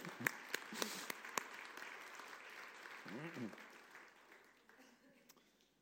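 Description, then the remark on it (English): Soft, scattered applause from a group at a worship service, given for the people who served in the worship, with a few sharper individual claps early on, fading gradually; a brief voice sounds partway through. “I was going to suggest we give them a round of applause, but they've disappeared.”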